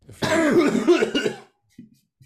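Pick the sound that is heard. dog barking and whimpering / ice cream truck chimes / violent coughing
violent coughing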